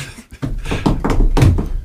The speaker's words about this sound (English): Yeah. That was our footsteps.